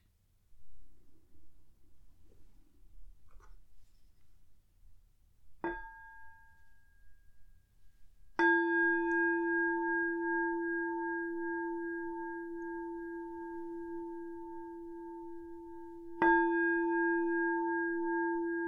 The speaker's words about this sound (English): So if you want to take a moment to get yourself into a comfortable position, we're going to start with three sounds of the bell, and the usual settling in introduction.